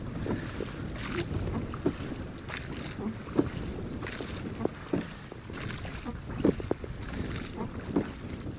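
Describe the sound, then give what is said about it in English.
A large blue rowing boat being rowed by a man across open water out to an island, with steady oar strokes knocking and splashing roughly every second and a half over constant wind buffeting and lapping water. “This boat we're in is a large boat, blue in colour, and it's being rowed out by a man out to the island.”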